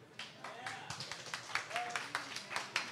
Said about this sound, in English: So by round of applause, Marlon Mack